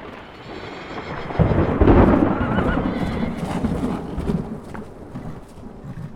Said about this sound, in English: walked to his horse, and rode swiftly out of town in the torrential rain, with thunder and lightning flashing and booming all around him.